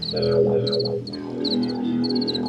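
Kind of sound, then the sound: insect, crickets chirping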